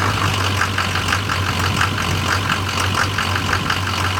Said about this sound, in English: when you first start the truck, you'll immediately notice that the fuel pressure is way too high. You'll feel it lope extremely hard. The truck will feel like it's working way too hard. A lot of rattle, a lot of pinging, a lot of engine noise.